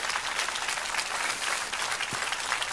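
audience applause

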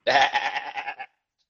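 sheep bleating

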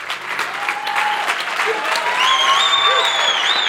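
audience clapping

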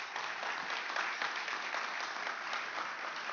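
round of applause

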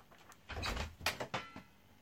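door being opened

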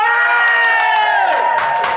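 studio audience cheering

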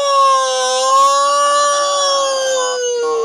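police car siren

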